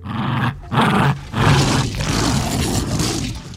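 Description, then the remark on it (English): A deep, rasping T-Rex roar sound effect: a short snarl, then a longer rumbling bellow with a growly, layered texture, loud and sustained with brief breaks between bursts. Gary made the T-Rex's sounds using his Jack Russell Terrier playing with a rope toy. “Gary watched his Jack Russell Terrier playing with a rope toy and saw the similarity of the T-Rex grabbing and shaking other dinosaurs and lawyers to death.”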